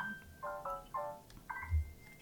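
A mobile phone ringtone goes off during a Dungeons & Dragons game, a short electronic melody of four or five bright, buzzy notes that step between pitches, with nobody speaking over it.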